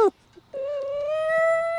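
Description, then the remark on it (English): A female dog howls in one long, steady, high-pitched wail that holds and swells slightly in loudness, preceded by a brief yelp and a moment of quiet. “She howls at the sirens.”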